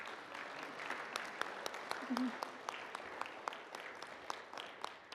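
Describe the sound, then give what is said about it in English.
A room full of people claps steadily during a service to welcome first- or second-time visitors, a dense patter of hands with sharper individual claps standing out, moderately loud and sustained throughout without a pause. “We'd love to welcome you with applause.”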